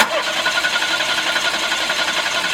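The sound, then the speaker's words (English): A machine whirs and rattles into motion after its start button is pressed, a dense, steady mechanical clatter with a fast buzzing rhythm that holds at an even, fairly loud level throughout, with no voices. “Right, hitting the start button now.”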